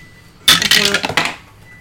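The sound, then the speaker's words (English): A burst of hard plastic dice clattering and rattling tumbles down through a dice tower for about a second, bright, then settles into quiet. “Alright, we'll do the dice tower again”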